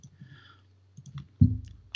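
Computer keyboard typing and mouse clicking while looking up a buyout calculator: a few quiet, scattered taps, then a louder cluster of clatter and a final click, with no voices.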